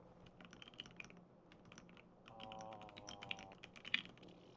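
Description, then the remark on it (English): Rapid clicking of keys on a computer keyboard, an irregular burst of crisp taps with a faint hum rising in the background partway through. “Ignore my typing.”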